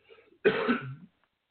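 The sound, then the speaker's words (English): A single harsh, raspy cough from a person working while sick, preceded by a faint intake of breath and fading into quiet afterward. “And my listener, sorry for the cough.”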